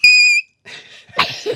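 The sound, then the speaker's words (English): A person imitates a zebra's call: a loud, high-pitched squealing note, then a few breathy, raspy huffs and snorts. “What sound does a zebra make?”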